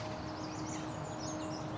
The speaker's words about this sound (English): On this morning, I'm walking the Woodland Cemetery in Burlington, Ontario, along the shore of Hamilton Harbor. A mix of currently breeding birds, migrating birds, and year-long residents is filling this urban landscape with song.